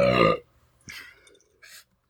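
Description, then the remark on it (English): A loud burp after drinking stout rumbles for about half a second, followed by quieter breathy and shuffling sounds, a faint smack, and a short airy exhale. “Why the fuck did I burp?”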